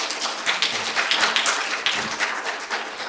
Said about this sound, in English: So just a round of applause